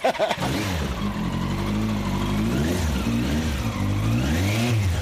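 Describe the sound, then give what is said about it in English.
A Yamaha R1 1000 sport motorcycle engine revs up loud, its pitch climbing and falling in several sweeping surges over a steady idle rumble, with no voices. “This is a Yamaha R1 1000, and it just helps me to go roaming.”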